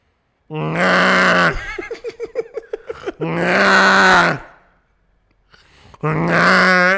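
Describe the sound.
A man imitates snoring with his voice: three loud, rasping snorts, separated by a fluttering, sputtering exhale and a brief quiet pause.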